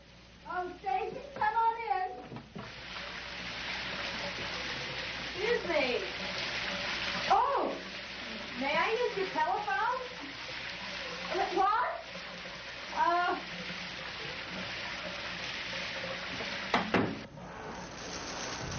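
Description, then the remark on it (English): A shower runs steadily with a constant hiss of spraying water in a film scene where an actress's character wanders in from the beach and catches Georgina Spelvin in the shower; voices speak and murmur over it throughout, ending with a sharp knock near the end. “She's just this lady who like wanders off the beach into the house, catches Georgina Spelvin in the shower.”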